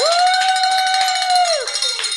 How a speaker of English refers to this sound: Well, we have other really good news, and that's because you get to pick up the bell and you get to ring it because of the generosity.